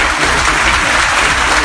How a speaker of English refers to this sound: I think we need to have a massive round of applause.